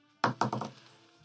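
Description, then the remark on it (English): New dice, rolled for an insight check, clatter across a tabletop: a loud first knock, then three quick bouncing taps that fade as the dice settle. No one speaks. “Why don't you make an insight check? Ooh-wee. The new dice today.”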